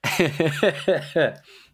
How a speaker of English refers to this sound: Oh lordy, I've got a bit of I'm starting to get a bit of a tickly cough. Uh oh, everyone. It's not great. It's not great.